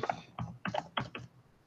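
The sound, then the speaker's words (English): Quick bursts of typing on a computer keyboard as someone types the phrase "stacking the deck": several clustered clacks in an uneven rhythm, fairly quiet, with no one speaking. “hang on, I'm typing stacking the deck in here.”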